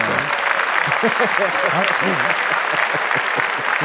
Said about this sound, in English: Oh, Rudy Giuliani, his license to practice law was suspended today. As yes, a matter of fact. Clap that up.